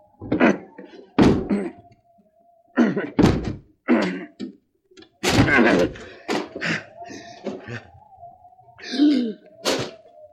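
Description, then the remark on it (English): Heavy thuds and bangs land one after another at irregular intervals, loud, as a locked door is battered and broken down, with strained grunts between the blows. “The door's locked. I'll have to break it down.”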